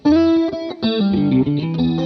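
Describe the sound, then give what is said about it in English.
Electric guitar played through a Giuliana chorus pedal (not used in stereo) and a Mercury 7 reverb by Maris, sustained chords with a shimmering, wavering tone, loud, ringing on alone with no voices for about two seconds. “I got a Giuliana, not utilizing its stereo capabilities, but it does have that, which I really enjoy.”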